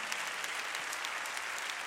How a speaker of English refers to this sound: Clap your hands and give praise to God.